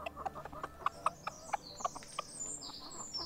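A cluster of short, clipped clucks from several hens, irregular, with brief chirps and higher bird calls scattered above and no one speaking.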